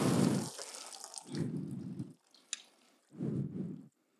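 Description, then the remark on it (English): Three short bursts of water squirting into a container, each lasting under a second with brief pauses between, moderately loud, with a small drip-like tap in one gap. “Do you want to squirt a little bit of water in?”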